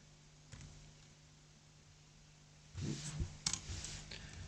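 Soft, scattered taps on a laptop keyboard: one isolated keystroke, then a short burst of several quick clicks and a sharper tap, against a quiet background hum.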